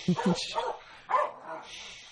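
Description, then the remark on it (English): A dog on the campus of the University of California at Irvine barks a few times in quick succession, two short yaps followed by a louder bark after a brief pause, clear. “What is wrong with that dog? Every darn day.”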